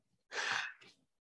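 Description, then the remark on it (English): Someone blows their nose away from the microphone: a long, breathy honk of rushing air followed by a shorter second puff, with no talking during the sound. “I'm going to move away from the microphone. I've got to blow my nose.”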